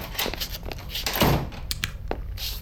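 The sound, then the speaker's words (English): A manager's office door thuds shut, followed by a string of knocks, clunks and a brief scrape as a desk chair is jammed under the doorknob to barricade it; no one speaks. “Let's pick up the action as they try to barricade the room from errant ghoulites.”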